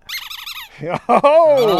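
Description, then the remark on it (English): A rubber squeak toy belonging to Mahler the dog squeaks in a quick run of high, wavering squeals, loud, as the dog squeezes it, and then a voice follows briefly. “I just want to remind folks that this little squeak toy here that Mahler has”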